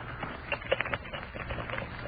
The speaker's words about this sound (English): Oh, I like the sound. Money, money, yellow money.